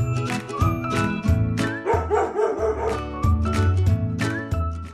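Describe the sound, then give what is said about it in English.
A dog named Rexie barks repeatedly in loud bursts, about every half second to a second, with a faint tinkling sound in between and no one talking. “Now, that was not me introducing the story, was it? It was a dog, and the dog's name is Rexie.”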